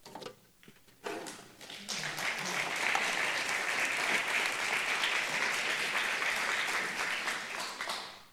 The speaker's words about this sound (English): You didn't get applause in the first service.